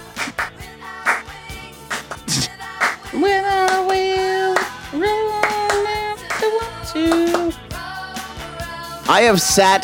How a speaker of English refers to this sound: Guys, any song with clapping.